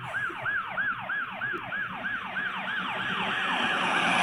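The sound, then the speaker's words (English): A police siren wails in quick, repeating up-and-down sweeps, growing steadily louder as it draws closer, with a low traffic rumble underneath and no voices. “Howard then kneels beside him as the two hear police sirens closing in.”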